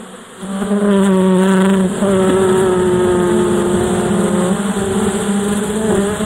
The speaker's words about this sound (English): Oops. What was that? That would be the killer bees.